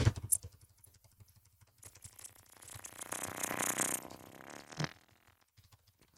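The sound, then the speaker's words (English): Fingers drum rapidly on a desk as a drum roll before the Game of the Year winner is revealed, a rattling roll starting as scattered taps, swelling into a denser, louder patter in the middle, then thinning out again. No one speaks. “I'm trying to do a drum roll, but, you know, noise suppression.”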